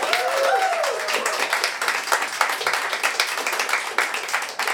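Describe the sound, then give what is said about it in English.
A crowd applauds the players at the end of a game round, dense overlapping claps filling the whole stretch, with a few cheering voices rising briefly at the start. “A round of applause for all our players.”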